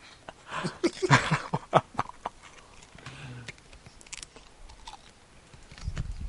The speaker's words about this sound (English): Fuck are you chewing on, motherfucker? Just a chip real quick, you know?